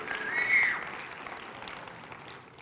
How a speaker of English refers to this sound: Listen, everyone's clapping for you.